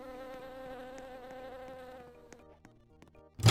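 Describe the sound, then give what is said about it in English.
Bees buzz in a steady, wavering drone while bee spray is sprayed everywhere; the drone thins out and fades over a few seconds, then a sudden loud burst of noise cuts in at the very end. “Right now I'm just being spraying bee spray everywhere.”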